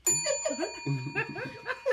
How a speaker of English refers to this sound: She like the bell.